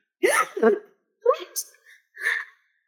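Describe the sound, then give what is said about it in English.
A voice acts out gasping for air: a few sharp, ragged vocal gulps in quick succession, fairly loud, with brief pauses between them. “And as you sit up and gasp for breath”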